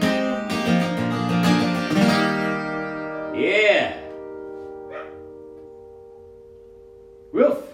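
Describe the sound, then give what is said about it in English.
Dogs bark outside: a busy cluster of overlapping barks and yelps at first, then a few separate, drawn-out barks with quiet gaps between them. “Dogs outside.”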